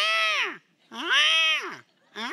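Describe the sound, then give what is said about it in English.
A person imitates a cat's meow with two long, loud, drawn-out wails that rise and fall in pitch, separated by brief pauses, and a third cry begins at the end. “And I'm laying in bed and completely asleep, and all of a sudden I hear this cat. And it's like this.”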